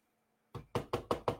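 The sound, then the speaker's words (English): Six firm knocks on a wooden door in a steady, quick rhythm, fairly loud, after a brief moment of near silence. “You hear me knocking at the door?”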